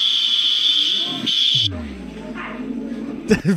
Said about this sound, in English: The fire alarm?